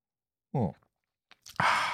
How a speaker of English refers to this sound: As he takes one last sip of tea.